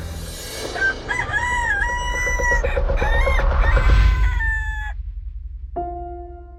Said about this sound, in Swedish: Nu kommer Petrus ihåg vad Jesus sa. Innan tuppen gal ska du förneka mig tre gånger.